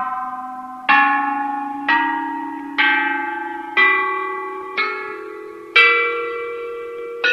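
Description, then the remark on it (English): The ancient bronze Zenghouyi chime bells from China, a set weighing nearly 5 tons and covering 5 octaves, are struck one after another, about seven clear metallic strikes at a steady pace. Each ringing tone fades before the next and the pitch shifts slightly between bells, with no voices. “The Zenghouyi chime bells are the largest among the entire archaeological discoveries in China.”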